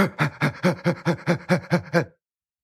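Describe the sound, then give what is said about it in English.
People imitate a dog's panting as part of a 'little dog, big dog' exercise: about nine quick, rhythmic, breathy huffs with a voiced edge, steady and fairly loud, stopping abruptly after two seconds. “Everyone, little dog, big dog. Come on, and pants, pants.”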